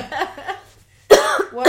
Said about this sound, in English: Sorry, I'm coughing it out.